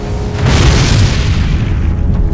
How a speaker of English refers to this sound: In an instant, the barn was reduced to a shockwave of wood and fire, blasting in all directions as the rocket came shattering out of the roof.